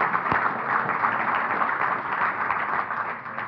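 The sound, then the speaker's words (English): An audience breaks into applause, a dense, steady wash of many hands clapping at an even loudness for a few seconds, with no voices standing out. “You can applaud.”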